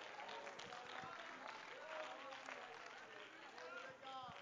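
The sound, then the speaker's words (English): An audience claps steadily and loudly throughout, a dense continuous wash of hands, with many voices calling out and singing over it, sounding reverberant. “Come on, let's clap our hands and lift up our voice.”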